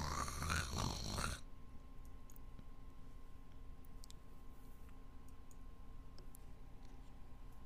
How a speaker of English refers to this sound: That they're all sleeping around, it looks like. Snoring one.